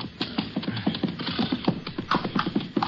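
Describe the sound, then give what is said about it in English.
Horses, one named Charcoal, scrambling down a steep bank at a culvert: a busy jumble of irregular hoof thuds, scrapes and sliding dirt, continuous for a few seconds with no voices. “Bank's pretty steep. Watch your horse.”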